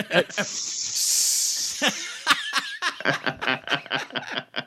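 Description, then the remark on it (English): A voice makes a long, steady snake-like hiss lasting about two seconds, followed by a burst of choppy laughter and snickering. “You do it like SSS. A snake.”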